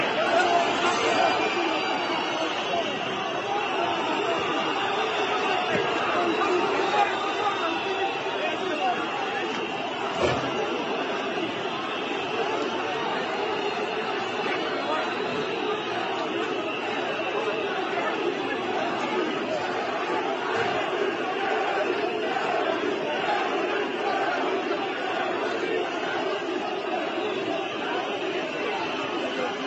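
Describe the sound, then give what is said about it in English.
Dense, steady murmur of a large crowd at a protest in Serbia against COVID lockdowns, at a government hall. Many voices blend into a continuous roar of chatter that holds at an even, fairly loud level throughout without distinct words. “The Serbian people are rising up against COVID lockdowns.”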